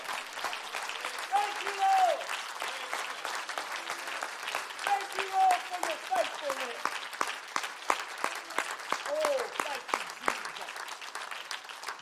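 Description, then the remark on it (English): An audience claps its hands to Jesus for about a minute, clapping steadily in a dense patter of many hands, while a few voices call out and cheer over the applause. “Let's clap our hands to him here for just one minute.”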